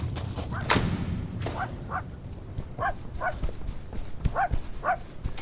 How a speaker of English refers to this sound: Shut up, you stupid dog!